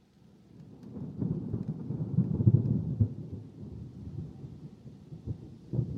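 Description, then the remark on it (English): Thunder rolls low and heavy as a storm approaches a one-story building in the town of Popka on a sweltering summer day, a long rumbling swell that builds and fades, with a faint wash of rain and no voices. “Towering storm clouds approach a one-story building on a sweltering summer day in the town of Popka.”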